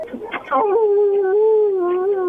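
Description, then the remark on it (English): A dog lets out one long, steady howl that holds a single wavering pitch for about two seconds, fairly loud, with a short burst of noise just before it. “The dog howling? I don't know what that was.”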